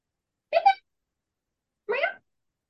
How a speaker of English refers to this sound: Nope, just a yawn.